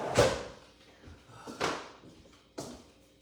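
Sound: door closing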